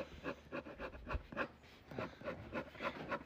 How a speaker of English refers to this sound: Your scratch, it literally sounds like a dog huffing. Sounds like Bella's big ass breathing in my ear when she's sitting in your lap.